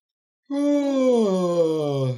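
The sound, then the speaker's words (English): A single long, drawn-out yawn, starting after a brief silence and sliding steadily downward in pitch like a deep groan before fading out, with no talking. “When you feel the nervous system shift or relax, you're just going to take a big, like almost do like a yawn.”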